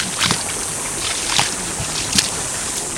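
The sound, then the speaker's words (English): Water splashing and sloshing in steady bursts as people wade through a shallow flowing creek full of tadpoles in a narrow side canyon of a reservoir, with a constant rushing backdrop of flowing water and a few sharper splashes standing out. “We splash through a flowing creek full of tadpoles, run our hands over towering willows.”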